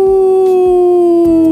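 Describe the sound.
A person imitates a wolf howl, a single solo howl: one loud, sustained, steady-pitched vocal tone with no other talking.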